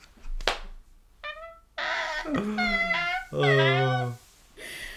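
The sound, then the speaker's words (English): A person vocally imitates a dog with a few drawn-out, whining barks and yelps, fairly loud, preceded by a brief sharp click. “I'm going to a dog do later. What's a dog do? Woof.”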